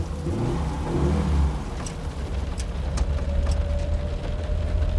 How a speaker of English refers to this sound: It's pitch dark. The wind is howling. Torrential rain hammers down on the car's canvas top. The windscreen wipers are going full pelt.